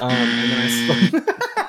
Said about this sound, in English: And we're out of time. The buzzer has gone off.